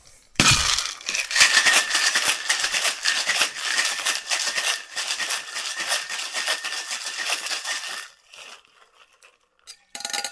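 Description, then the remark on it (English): Ice rattles hard inside a cocktail shaker for about eight seconds, a dense, rapid clatter at steady loudness, then stops, followed by a few quieter clinks. “And shake.”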